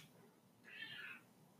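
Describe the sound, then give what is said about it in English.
A female cat named Bug, just woken up, gives a single short, high-pitched meow lasting about half a second, heard alone over a faint, steady background hum. “She woke up and she's like, meow.”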